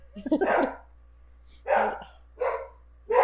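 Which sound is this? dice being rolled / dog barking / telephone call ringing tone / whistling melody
dog barking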